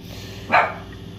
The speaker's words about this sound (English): And you'll have to pardon me, that's my dog deciding to go crazy in the background, the wrinkling noise. So yeah, speaking of the dog though, in my face, he's also the dog that will annoy me during a podcast.